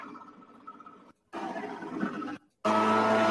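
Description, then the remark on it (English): A leaf blower roars in three separate bursts with short silences between, each louder than the last, ending as a man squeezes it to full throttle in a sustained blast of dense, whining engine noise. “Listen to the throttle of the leaf blower. Like he just full throttle squeezed it.”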